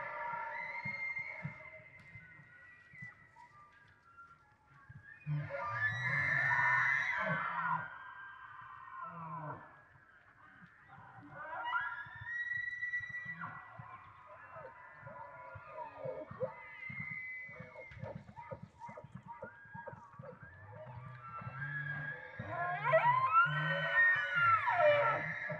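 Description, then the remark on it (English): Several bull elk bugle during the elk rut in high, eerie whistling squeals that rise and fall, with low rhythmic grunting glugs, made by the bulls as they herd up the cows, pulsing underneath throughout. “The Otherworldly Sounds of an Elk Rut”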